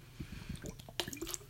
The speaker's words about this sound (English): All right. Let's, before I read this, get a sip of water to prepare myself. Always prepared.